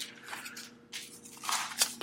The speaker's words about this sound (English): Turning the page here, literally.